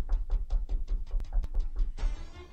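knocking

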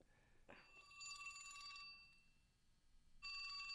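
flip phone ringing

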